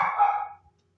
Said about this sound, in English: There goes Lucy. She is trying to deter crime in our local neighborhood by hanging out my window, barking at anybody walking by